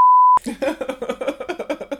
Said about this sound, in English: Should I beep that up? Yeah, just beep out her name.